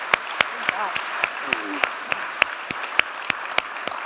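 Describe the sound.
Applause in a steady, fairly even rhythm of sharp claps that carries on for the whole clip, with a faint voice rising briefly underneath.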